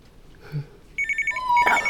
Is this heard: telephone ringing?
yes